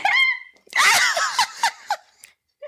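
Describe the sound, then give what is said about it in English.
A voice breaks off mid-word into a loud, strange sneeze: a burst of harsh noise with a warbling vocal tone, followed by three short sputtering bursts and a faint final sound. “It's because I was in the middle of saying I'm going to sneeze when the sneeze overcame.”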